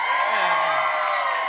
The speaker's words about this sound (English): Wait. Let me just compare the applause for Ed and then for Diane.